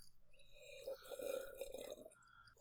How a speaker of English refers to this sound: Look, this deserves a wine slurp. Hold on. Pause for wine slurp.